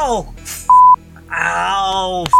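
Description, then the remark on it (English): A sharp, synthetic slicing sound effect for a blade of sound that shoots out when a lead pipe hits a wall: a descending tonal sweep, a loud steady electronic beep, then a buzzy rising harmonic tone that ends in another short beep. “a big, like, blade of sound emerged from it, shot out at you, and sliced through your leg.”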